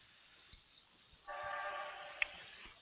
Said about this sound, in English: Sound like we got a train in the background.